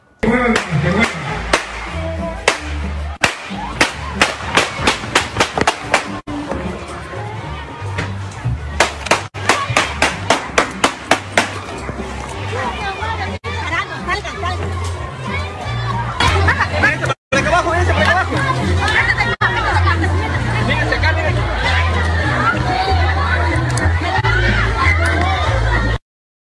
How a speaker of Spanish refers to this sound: Exacto, y eso sucedió, por ejemplo, ayer en el cierre de campaña del señor Wilson Erazo, quien busca la reelección en Santo Domingo, donde se escuchó literalmente una balacera en el cierre de su campaña.